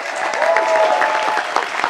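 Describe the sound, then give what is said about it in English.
A crowd at the first Letterkenny Talent Show claps steadily, a dense patter of overlapping hand claps at even loudness throughout, with a faint voice or cheer running underneath. “Welcome, Letterkenny, to the first ever Letterkenny Talent Show. Round of applause.”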